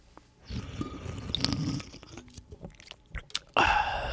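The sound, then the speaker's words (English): Someone sips a drink during a live recording at Mitchell's Garage: a run of wet slurping and swallowing mouth sounds with small clicks, ending in a louder breathy burst, and no talking. “Let me just take a sip here.”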